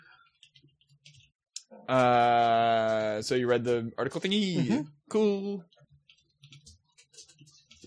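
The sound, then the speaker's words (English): Faint, scattered keyboard typing clicks tick along in the background at the start and end as someone types emails on a computer, while people talk in between, one voice drawn out and loud. “I was going to say, you're not typing in the doc.”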